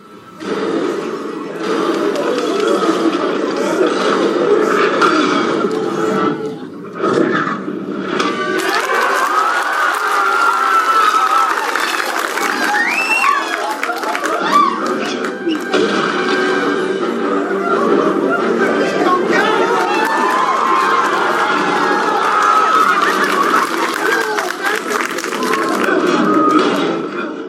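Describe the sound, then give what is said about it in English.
A packed movie theater audience roars and cheers nonstop for nearly half a minute, a loud, dense wall of shouting, hooting and guttural yells with no pauses. “And I've played it a couple of times on here where it's just this almost like, again, I don't want to say people's enthusiasm is disgusting, but it's this roar of just like guttural.”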